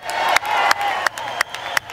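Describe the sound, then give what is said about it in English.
Members of Congress applaud and cheer in a steady roar as the President of the United States is presented, while a few loud, sharp claps made into a microphone stand out on top in an even rhythm, about three per second. “Come on, don't clap in the mic, please.”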